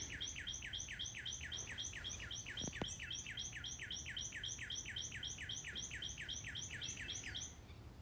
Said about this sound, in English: That is a long-winded bird.